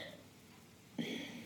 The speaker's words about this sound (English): And I think, oh God, I'm getting the hiccups. And I think that, hopefully I only get one.